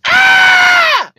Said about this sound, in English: I thought you were just screaming for fun. No, I was not screaming for fun. There was a guy at our window, and he's a fat piece of shit.